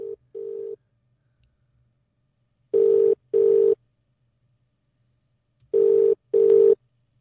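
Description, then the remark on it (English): A phone line ringing out as a call is placed: three double-burst ring tones, each a pair of short steady buzzes with long pauses between, clear with no voices. “I'm ringing you when you asked me to.”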